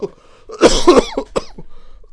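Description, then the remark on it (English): A person coughs hard a few times in quick succession, with rough, throaty bursts, followed by a softer cough near the end. “Hey, I've had a cough for time, you know.”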